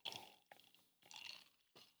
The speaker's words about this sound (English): Before I do, let me take a sip of this fine tonic water with a little bit of raspberry lemonade concentrate added.